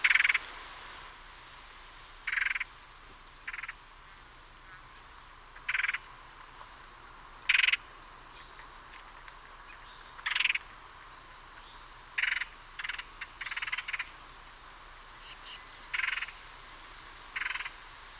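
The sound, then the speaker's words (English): Red-headed woodpeckers give short, harsh, rattling winter calls, about a dozen irregular bursts traded back and forth between birds, over a steady thin high-pitched drone with no voices. “So let's listen to the winter calls of the red-headed woodpecker to get a feel for what Mr.”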